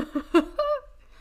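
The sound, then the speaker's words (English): A person yawns: a few short breathy vocal bursts, then a drawn-out voiced exhale that slides down in pitch and trails off into quiet. “And that also results in me wanting to yawn because I convince myself I can't breathe.”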